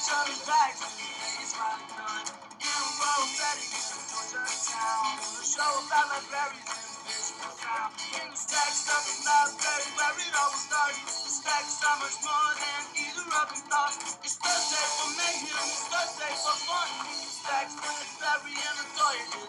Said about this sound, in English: So this is our new theme song.